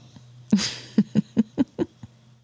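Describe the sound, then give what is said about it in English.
A bulldog barks at a microphone about six times in quick succession, short low-pitched woofs at a steady rhythm, moderately loud, with no talking over them. “Like right now, I think he's barking at my microphone.”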